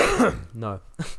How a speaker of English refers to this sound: No. Cough. Nothing else.